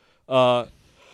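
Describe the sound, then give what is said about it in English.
A short, loud voiced yawn late at night, a single strained tonal burst lasting about a third of a second before fading into quiet background noise. “We're doing this podcast very late, and it's a work night, so if I yawn, I apologize.”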